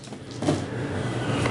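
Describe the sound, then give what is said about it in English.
A single abrupt sneeze bursts out over a steady low background hum, followed by a quieter stretch and another brief noisy burst at the very end. “Bless you.”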